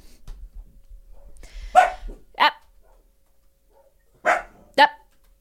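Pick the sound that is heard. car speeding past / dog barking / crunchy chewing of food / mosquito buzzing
dog barking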